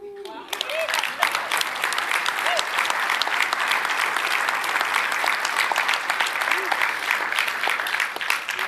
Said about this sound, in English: So are you glad I'm leaving? I don't understand what's the applause for. I'm kidding.